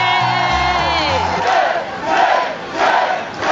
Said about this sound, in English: You know, I will say this, that when we play that, there's that one sound where it goes, yay!